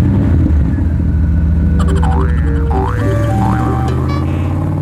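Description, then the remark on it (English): A deep, throaty muscle car engine rumbles loudly and steadily throughout, with a few springy, cartoonish warbling tones bouncing over it partway through. No one speaks. “So now we will take a vacation from our problems and go to Goofball Island in a muscle car.”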